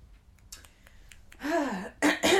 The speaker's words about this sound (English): Gotta clear my throat.